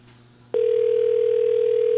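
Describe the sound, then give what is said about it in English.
A telephone ringback tone sounds during a call, on the third ring: a single loud, steady electronic burst that begins about half a second in and holds unbroken to the end over a low background hum. “We're on ring number 3.”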